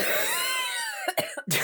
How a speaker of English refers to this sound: I like to think this coughing is in character, like occasionally she's just like coughing up pine needles or something.